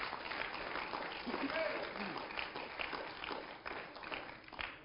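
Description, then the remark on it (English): A church audience claps for Jesus during a sermon, a dense, continuous patter of many hands with slight swells in loudness, and a few voices call out beneath the applause. “Come on, somebody give a hand clap to Jesus.”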